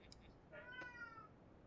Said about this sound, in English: You're being called to the boss's office because you have a screaming cat in your desk, and it's upsetting the incredibly fragile men you're talking to.